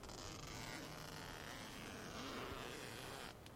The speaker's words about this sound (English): Alright, I'm at my tent. I gotta find the zipper. Oh, zipper sound.